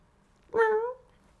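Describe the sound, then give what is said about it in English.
A single meow from the cat Senor Calorino, about half a second long, clear, with a slight rise then fall in pitch, standing alone against a quiet background. “You traded me for a cat. You still got that cat, Gozo?”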